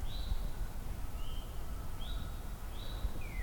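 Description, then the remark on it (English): Faint background birdsong from a northern cardinal, pine warbler and eastern towhee in a busy natural soundscape: a handful of thin, high whistled notes spaced through a steady low rumble of background noise, with no talking. “Still in the background, Northern Cardinal. Pine warbler, eastern towhee.”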